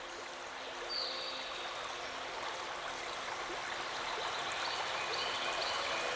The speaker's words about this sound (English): Can you hear the river just across from me?